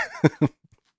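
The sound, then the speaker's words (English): Two short, dry coughs in quick succession, each a brief harsh burst, following a faint voiced sound and then trailing off into near silence. “My cough is dry like a big pizza pie”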